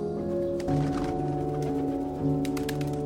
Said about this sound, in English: A pigeon cooed back at me from its nest before spreading its wings and flapping up into the rafters.